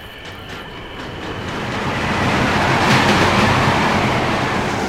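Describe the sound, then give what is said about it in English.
A passenger train of the Tangula Railway rumbles steadily along the rails at night as it reaches 15,000 feet on the high passes through the Himalayas across the Tibetan plain, a broad continuous roar with faint rhythmic clatter, swelling slightly louder as it goes, no voices present. “Supplemental oxygen slowly hissed through the compartments of the Tangula Railway as it reached 15,000 feet on the high passes through the Himalayas.”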